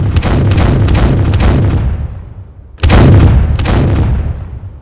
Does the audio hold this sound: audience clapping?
no